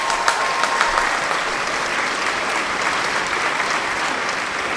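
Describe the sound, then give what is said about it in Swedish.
Steady, dense applause from a group, a continuous wash of clapping hands lasting the full few seconds at even loudness, with no voices standing out. “Jag tycker vi är en stor applåd.”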